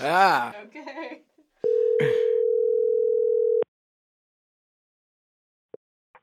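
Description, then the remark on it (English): A voice speaks briefly as a phone call is taken, then a steady, mid-pitched electronic telephone tone holds for about two seconds before cutting off abruptly, followed by near silence with a couple of faint clicks. “All right, let's take a call.”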